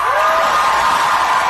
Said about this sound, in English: You hear the applause there. You who were there last night, how do you feel that comment was received?